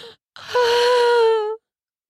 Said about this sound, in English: I yelp, which turns swiftly into a loud moan.